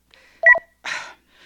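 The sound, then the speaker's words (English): A quick pair of electronic keypad tones chirps from a cordless phone as a button is pressed to answer a call, followed by a short rustling clatter of the handset being picked up. No one speaks. “Where did I leave that cordless phone?”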